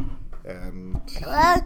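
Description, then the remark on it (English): A toddler boy babbles in a quick run of wordless syllables, ending in a louder, rising squeal-like vocalization. “And he kept vocalizing.”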